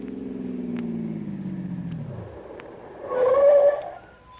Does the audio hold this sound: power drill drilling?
no